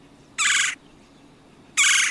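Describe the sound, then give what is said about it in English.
Two loud, rolling churring calls of a red-bellied woodpecker, each a short harsh burst separated by a pause of over a second, clear against a quiet background. “The Red-bellied Woodpecker and Its Curious Name”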